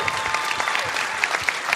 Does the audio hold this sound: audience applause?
yes